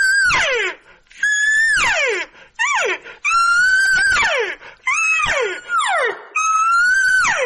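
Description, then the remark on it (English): A human voice imitates a lost calf's moo, letting out six or seven loud, strained bawls in quick succession, each held high before sliding downward, with brief gaps between. “Like if I am doing a lost cow, lost calf, right?”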